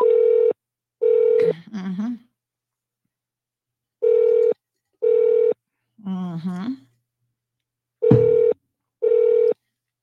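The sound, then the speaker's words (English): Short, steady electronic telephone tones sound in evenly spaced pairs, clear, with brief bursts of talking in the gaps between them, as a call is placed to the Department of Health Regulatory Services during a live radio broadcast. “Let's give them a call this morning too, because I want to know what they regulate exactly, because they can't even give you up-to-date information.”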